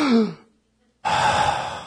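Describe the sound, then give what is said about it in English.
A person acts out waking in the middle of the night after not breathing, their sinuses plugged by allergies: a short vocal gasp, a brief silent pause, then a long, loud, rushing breath of air. “And I'll wake up in the middle of the night not having been breathing. And this is how I wake up.”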